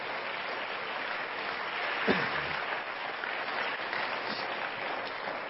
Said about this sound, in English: And I think that this whole church ought to give her a hand clap today for many years of service.